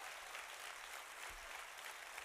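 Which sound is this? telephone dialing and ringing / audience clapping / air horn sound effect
audience clapping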